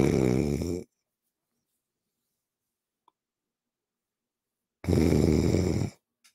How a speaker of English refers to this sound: He says, "He's asleep. The guy's snoring."